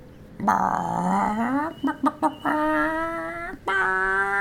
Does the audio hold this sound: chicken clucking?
yes